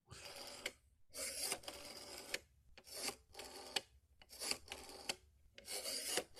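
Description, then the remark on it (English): A rotary phone dial is turned and whirs back again and again, six or so raspy, clicking bursts separated by brief pauses, with no talking. “How about this one? Nah, rotary dial.”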